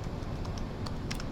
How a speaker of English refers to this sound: I'm typing in white players in black face masks.